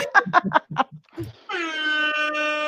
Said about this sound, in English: That deserves an air horn.